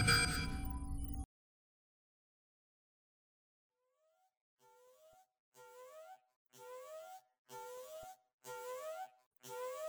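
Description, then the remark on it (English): A sudden loud concussive blast cuts to silence, then alarm bells fade in, sounding in steady pulses about once a second and growing louder, with no voices. “Lieutenant Bastion, you come back to consciousness with alarm bells going off.”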